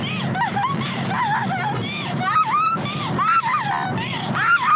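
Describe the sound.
A woman in the back of a truck laughs and cries hysterically at once, her high voice wavering and sobbing in unbroken bursts over a steady low engine rumble, fairly loud.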